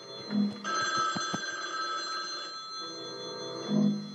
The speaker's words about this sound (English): Jeez. You gonna answer the phone?